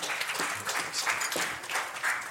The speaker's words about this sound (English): Come on up and give me a hand, if you would, please. Give her a big round of applause as she comes.